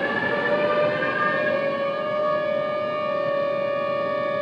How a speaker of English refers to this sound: How does a city know a tornado is coming? The tornado sirens.